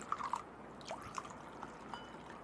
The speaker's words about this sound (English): Pour Semyon a drink, would you? Yes, Domina.